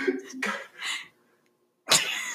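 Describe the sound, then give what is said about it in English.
A few breathy, voiced gasps build up, then a short pause before one sharp, loud sneeze bursts out and trails off into a brief vocal tail. “I have to sneeze.”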